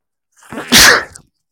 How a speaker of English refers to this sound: I'm going to sneeze.